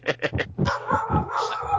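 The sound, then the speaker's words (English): Dogs bark in a quick run of three sharp yaps, then keep up a busier stretch of overlapping barks and yips, loud, with no one talking. “I think the dogs heard that and they're like, "What? We like that?”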